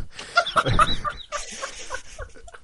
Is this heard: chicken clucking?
yes